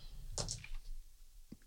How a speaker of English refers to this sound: So Thora has to roll like a, she has to get over 25. On her percentage dice, I would say. Okay, here it goes.